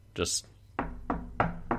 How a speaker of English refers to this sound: just knocks on the door